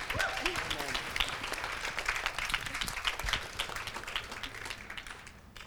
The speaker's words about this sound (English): Why do you think they clapped? Try again. Maybe some people could relate, and you know, they're probably really scared to share too, and that I did it.